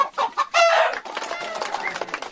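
Several chickens cluck and squawk in a busy, overlapping flurry, with one louder drawn-out squawk near the start, then quicker chattering clucks.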